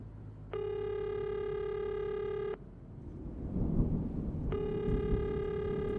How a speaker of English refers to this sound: Come on, answer. God damn it, pick up the phone.